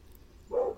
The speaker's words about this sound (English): Ooh. Dog barking outside.